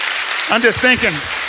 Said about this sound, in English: Pathway Church, Baldwin County. Come on, man, can somebody give the Lord a great hand clap of praise?